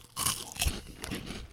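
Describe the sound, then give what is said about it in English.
Crisp crunching as someone bites into a crunchy chocolate treat filled with runny fudge: a sharp bite near the start followed by another loud crackling crunch and softer chewing, with no voices. “Crunchy exterior. It's like an ice cream cone filled with runny fudge.”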